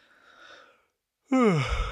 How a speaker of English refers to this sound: Man. Look, you guys like that? You like that yawn and stretch on mic? That was good.